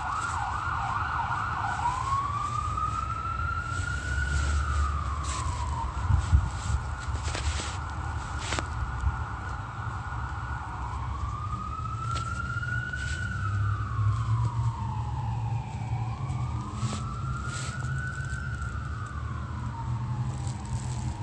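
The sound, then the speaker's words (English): Fire department sirens wail in slow rising and falling sweeps, repeating over and over, loud and steady above a low rumble of traffic and engine noise. “7:15, that's the fire department sirens.”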